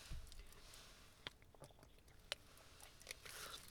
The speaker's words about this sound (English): Sorry, I'm going to sip some water. I've got just a little bit of a scratchy throat.